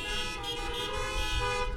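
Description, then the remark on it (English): A chorus of car horns honks together at a church's first Advent service, as people honk to agree about the wonderful weather. It is a sustained, overlapping blare, loud and continuous for the whole moment, with no voices over it. “If you agree and are happy about this, please honk your horns.”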